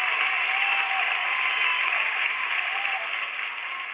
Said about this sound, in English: I think it's just a little applause we wanted to share this morning to show how much we appreciate you.